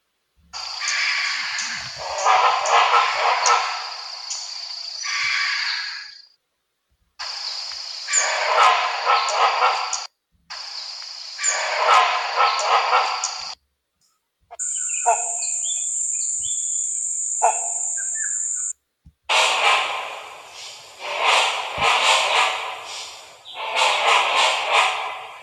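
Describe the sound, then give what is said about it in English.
Loud, harsh roaring bird calls with a barking quality come in several long rasping bursts separated by brief pauses, with no talking. “And so here's an example, I guess, of a roaring, almost like a barking sound.”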